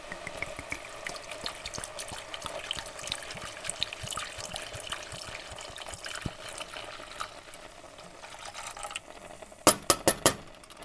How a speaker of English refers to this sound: Now, I've just gone for a small bottle of red wine from Marks and Spencer's. So I think we're going to add this in with the mushrooms and the spices. Yep, we're going to pour this in, adding the red wine to the mushrooms.